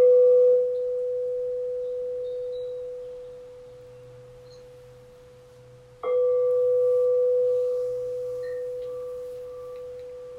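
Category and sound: signal or alarm, meditation bell ringing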